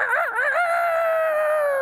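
A loud, clear rooster crow: a brief warbling start that settles into one long, drawn-out note, with no other sounds around it.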